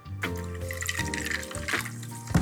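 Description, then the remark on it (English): Club soda pours steadily into two rock glasses holding a gin and lemon juice mix with ice cubes, the splashing pitch shifting as it fills, with brief pauses between pours and a light clink near the end. “Add club soda to taste.”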